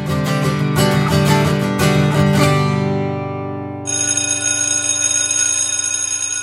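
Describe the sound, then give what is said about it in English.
A loud electric high school bell in Kawartha Lakes rings continuously for several seconds, its rapid metallic clatter giving way to a steady, shrill sustained tone, with no voices. “Well, there's a sound that wasn't heard by high school students for many months, but it's back, though not as frequent.”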